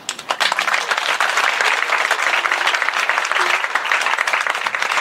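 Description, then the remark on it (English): Steady applause from a crowd at the Village Underground, a dense wash of many hands clapping at once, loud and sustained for the whole stretch with no break and no voices standing out. “You guys don't need to applaud after every day.”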